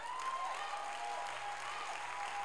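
An audience claps steadily, a dense, continuous wash of hands filling the whole moment at an even level, with a thin sustained tone humming faintly underneath.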